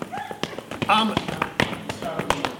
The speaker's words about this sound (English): But that night, there was a knock at the door. Can I have a knock at the door, please? Knock.